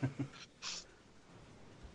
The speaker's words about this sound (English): Take that cat upstairs.